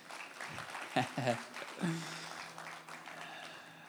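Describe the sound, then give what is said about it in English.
An audience at a church service claps in a dense, steady patter for a few seconds, with a few voices calling out and cheering over the applause before it gradually thins. “You could clap now. Let's clap for that.”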